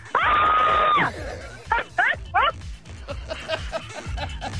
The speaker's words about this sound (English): I've never made a woman scream like that before.